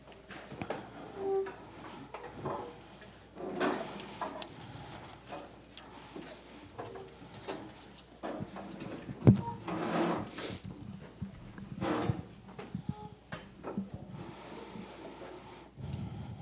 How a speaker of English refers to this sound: I am going to pray, but I'd like you all to just stand so the clunking of the chairs and all of that is over before we start into prayer and worship time.